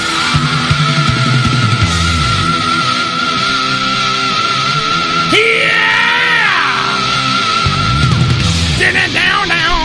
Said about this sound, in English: He screams better than you. Absolutely. Who does it? Watch this. I can break glass.